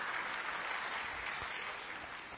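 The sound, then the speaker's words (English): A church audience claps steadily during a sermon, a dense, continuous wash of many hands applauding at a fairly even level with no voices on top, tapering only slightly toward the end. “Yeah, hand clap would be even better.”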